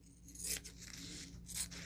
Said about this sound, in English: All right. Plastic cutting is weird.